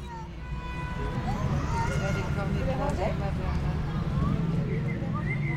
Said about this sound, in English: And then this, a Eurasian blackbird competing with some cars.